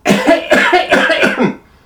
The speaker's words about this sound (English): And then they heard a slight cough.